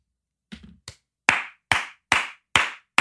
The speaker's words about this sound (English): Yeah, honestly, like slow clap for Chris Cuomo.